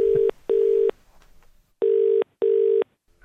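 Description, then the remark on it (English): A phone line ringing out as a call is placed to a man, with a steady mid-pitched ringback tone, heard as two loud double-ring pairs separated by a short pause, with no one talking. “So we rang Perel Kieran and we gave him a little”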